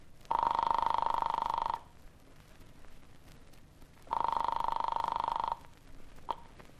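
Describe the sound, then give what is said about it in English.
Two long, steady ringing tones come through a telephone line after an apartment number is dialed from a phone at a farmer's house, each lasting about a second and a half, separated by a pause of a couple of seconds. The ringing is fairly loud, with no talking. “He eventually led me to the phone and I dialed my apartment.”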